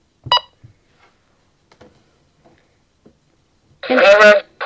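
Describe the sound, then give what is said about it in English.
A single short electronic beep from a digital scale as its tare button is pressed with a small Bluetooth speaker on it, resetting it to 0.0 ounces, followed by quiet, faint clicks and handling noises, then a person starts talking. “And it beeps and it takes me back to 0.0 ounces.”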